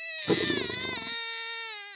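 A newborn tiger cub cries once in a drawn-out, high wail, opening with a rough, throaty burst before settling into a steady, tonal whine that dips and fades at the end.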